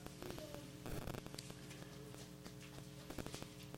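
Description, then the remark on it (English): Thin pages of Bibles being turned as listeners look up 1 Thessalonians chapter 5, verse 9 during a sermon, a run of crisp papery flicks and rustles in quick irregular bursts over a low steady hum, with no one speaking. “I love hearing them pages turn.”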